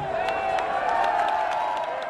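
A large outdoor crowd of World Cup soccer fans watching the USA-Germany match on massive screens in DuPont Circle cheers and shouts continuously, a dense roar of voices with scattered whoops and claps, steady and loud from start to finish.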